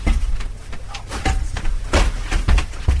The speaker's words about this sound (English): Just open the door.